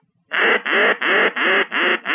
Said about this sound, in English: I'm going to demonstrate that real quick. Yeah, okay, please. When you grunt into a duck call, a lot of guys grunt, and you hear that over the call.